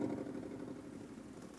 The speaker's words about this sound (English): The smoke coming out of the worn-out engine and the smell of petrol are unbearable.